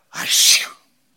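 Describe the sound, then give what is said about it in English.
A single short, wet-sounding sneeze imitated by a voice, mimicking a boy's sneeze: a sudden breathy, hissy burst lasting under a second, fairly loud, followed by silence. “And it was a wet sneeze.”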